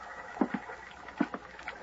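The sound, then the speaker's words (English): Soft water slapping against the wooden pilings of a small, ramshackle pier and the hulls of a couple of beat-up boats tied to it, early in the morning, arriving in two quick paired laps a moment apart over a faint, hollow background. “Then early next morning, I went out to the little pier. It was a ramshackle affair with a couple of beat-up boats tied to it”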